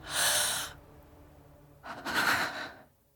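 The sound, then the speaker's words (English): Two ragged, breathy gasps for air, fairly loud, the first short and sharp, the second longer and rougher after a brief pause. “The doors are not airtight, but it's close enough, and I'm coughing, gasping for air, but not breathing.”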